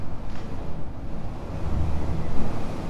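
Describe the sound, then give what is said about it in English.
Steady, blustery wind roars over churning sea water, a dense low rumble that swells slightly toward the end, with no voices present. “Hold on now. Going to cross the ocean.”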